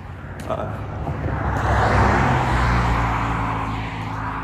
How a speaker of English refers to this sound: Big-ass fucking Meyer semi-truck just coming by to save my recording.